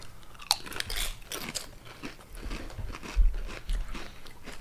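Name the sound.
crunchy food being chewed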